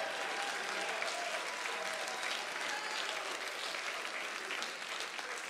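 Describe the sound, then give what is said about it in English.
An audience at a worship service praising Jesus claps hands in sustained, dense applause with scattered shouts and cheers mixed in, steady and loud throughout without any clear speaking voice. “Come on, clap your hands and shout.”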